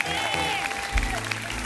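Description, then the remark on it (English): A church audience gives the Lord a clap offering, clapping together in a steady, dense patter of many hands that holds for the whole moment, with a sustained musical tone and faint voices running beneath the applause. “And everyone who believes your best is yet to come, give the Lord a clap offering and say amen.”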